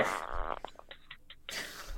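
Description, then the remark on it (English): A raspy fart-like noise: a loud sputtering burst, a quieter stretch of faint scattered crackles, then a second rough burst swelling at the end, with no talking. “Is that a fart? Sounded like somebody ripped one.”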